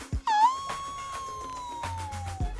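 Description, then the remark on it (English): A person imitates a wolf howl: one long, sustained wail that swoops up, then holds and slowly sinks in pitch for about two seconds. It's fairly loud, with no talking over it. “It's a howl, honey.”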